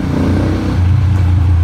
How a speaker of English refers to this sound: Hey guys, the Italian motorbikes go by there.